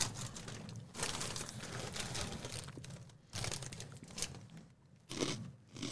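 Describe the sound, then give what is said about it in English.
Loud crunching of a rolled tortilla chip stick being bitten and chewed, with dense crackly bursts repeating over several seconds and no talking. “A solid crunch.”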